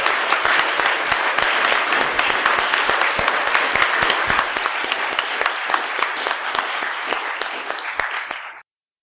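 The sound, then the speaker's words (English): An audience applauding together to praise the Lord, in steady, dense clapping that holds loud and even for about eight seconds, then stops abruptly. “Let's praise our Lord through our applause.”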